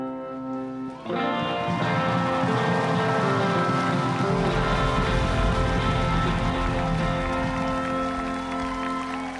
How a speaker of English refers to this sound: Thank the Newport Folk Festival. Thank the rain for not getting too crazy.